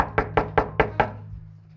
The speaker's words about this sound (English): So the kids were not actually vandalizing things and destroying property and egging your house to going around in costumes, knocking on doors.